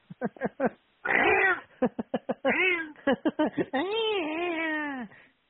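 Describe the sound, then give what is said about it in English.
A cat meows and yowls insistently, mixing short rapid chirping cries with longer drawn-out wails, loud and continuous with no other sounds or talk. “Stupid cat.”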